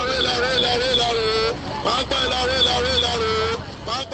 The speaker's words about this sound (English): Various destinations are announced over a megaphone at a bus station in Lagos.